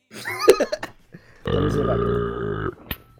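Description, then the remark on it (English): A long, loud, rumbling burp drags on for over a second, preceded by a few short, throaty vocal noises. “Is that you, or is that your... You farting, or...”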